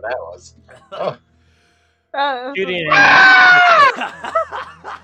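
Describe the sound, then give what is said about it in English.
A voice imitates the shriek of a creature in a swamp after vials of acid are thrown in: a loud, warbling, rising screech lasting about two seconds, shrill and animal-like, framed by brief mumbling talk before and after. “After a moment, though, you do hear a hideous scream, and then some green acid gelatin bubbles up from where that creature was.”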